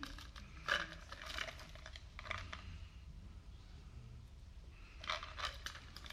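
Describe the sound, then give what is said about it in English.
Soft, scattered rustling and light clicks as flashcards and pens are passed around a class, coming in brief bursts with quiet pauses between, low in volume. “We'll just take one, pass them down, and here's some pens too.”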